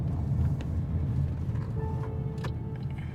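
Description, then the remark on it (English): Steady low rumble of road traffic fills the whole stretch, a continuous engine drone with a faint tonal whine rising briefly near the end; no one speaks. “Oh yeah, traffic.”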